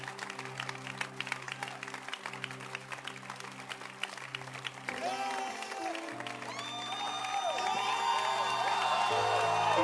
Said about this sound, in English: Can you give your loudest hand clap yet?